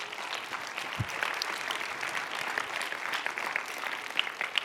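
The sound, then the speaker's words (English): A crowd claps steadily for several seconds, a dense, even patter of many hands with a few sharper individual claps standing out, fairly loud throughout and with no one talking. “And yeah, you like that? You can clap.”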